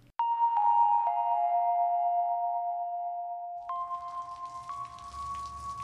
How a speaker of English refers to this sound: It was raining in Los Angeles, and it wasn't doing anything to help my mood either.